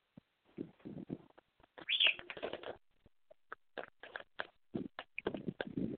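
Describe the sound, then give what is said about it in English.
A pet bird named Salty coos and chirps in short, uneven bursts, with one brief higher whistle-like note partway through and small pauses between calls. “Yes, that's you. You're the Salty Bird.”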